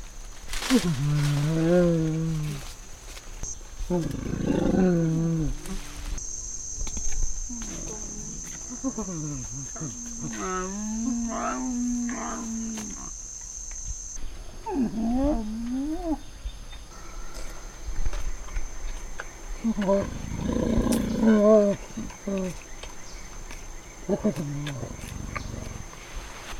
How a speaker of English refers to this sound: They can hum like dogs almost. And that is something that's very specific to feeding. So it often happens that they're sitting in a group and like in a big salad bowl and they are munching their leaves and then they start humming in a chorus.